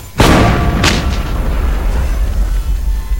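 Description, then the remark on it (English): A volley of shots from a pale revolver striking a creature, the Scream Eater, in the chest: two sharp, loud bangs about half a second apart, a few fainter cracks after, then a heavy low rumble that lingers to the end. “I hit the deck just in time to witness the Scream Eater take a volley in the chest, its shrieking breastplate shattering to pieces.”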